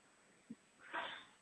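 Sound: sneeze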